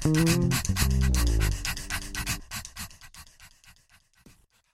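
A dog pants in rapid, steady huffs, loud, over a brief low tonal backing that drops away midway; the panting then grows fainter and trails off.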